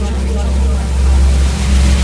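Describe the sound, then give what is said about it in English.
A deep, heavy engine rumble drones steadily and loudly throughout: a ship's engines running hard, with all the ship's power rerouted to them to try to pull away. A low throbbing pulse and no clear speech. “I'm going to try to reroute all the power on the ship just to the engines to try to pull away.”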